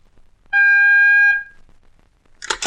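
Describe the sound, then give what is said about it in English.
A telephone time-announcement signal marking the time 11:41 and three quarters: one loud, steady beep lasting about a second, a clear mid-high electronic tone that cuts off cleanly, followed after a pause by a brief burst of hiss. “When you hear the signal, the time will be 11:41 and three quarters.”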